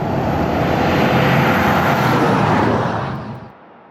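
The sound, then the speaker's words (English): A heavy 100-tonne vehicle roars past on a highway, a loud, steady rumble and rush of wind that holds for about three seconds before dropping away abruptly. “So that gives you a baseline for what 100 tonnes passing you on a highway might feel like.”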